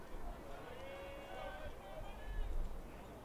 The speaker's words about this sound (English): Now the crowd mic's picking up some wind.